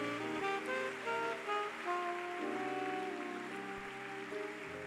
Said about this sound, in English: Keep clapping.